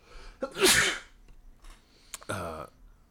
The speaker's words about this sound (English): Did everyone else hear that? What? You sneezed and I don't know. I heard something.